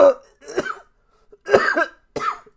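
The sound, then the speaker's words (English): Several harsh coughs come in uneven bursts, with short pauses between them: two at the start, a louder rattling pair in the middle, and one last cough at the end. “I'm coughing up the bad thoughts.”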